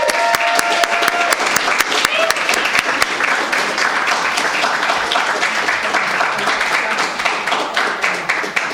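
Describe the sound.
An audience at a poetry reading applauds steadily for several seconds as a poet is introduced, a dense, even wash of many hands clapping at once, with a few faint voices mixed in near the start.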